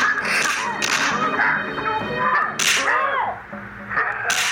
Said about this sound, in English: the Batman punches them a whole bunch of times. In the face. Right in the face.